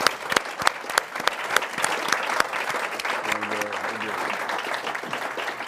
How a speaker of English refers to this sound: Let's bring him up with a round of applause.